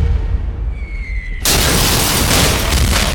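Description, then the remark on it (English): After a brief, quiet lull, a single cannon shot, fired on a Sunday evening from a western tower of the city of Orléans, booms out abruptly and loudly, its roaring, crackling blast sustaining through the rest of the moment without fading. “While in that tower, looking at the town through the windows, a cannon is fired from a western tower of the city.”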